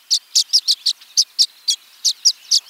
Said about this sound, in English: Once nesting season ends, these violet-green swallows seem to know it's time to party. They usually nest as single pairs in cavities or nesting boxes. But now, they gather on electrical wires by the dozens in the western United States, chattering